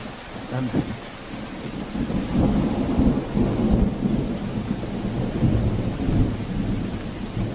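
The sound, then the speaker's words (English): A deep, rolling rumble of thunder echoes continuously through a storm, heavy low-end reverberation swelling and fading over several seconds, with a steady wash of rain beneath it. “But just imagine that echoing thunder all around and hail stripping the ground.”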